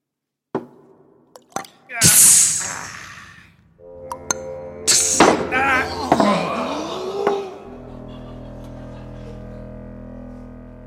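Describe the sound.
Poison drips onto Loki's face: a few sharp, isolated drips, then bursts of harsh sizzling hiss flare up twice, with a strained, groaning voice underneath before it settles into a low hum.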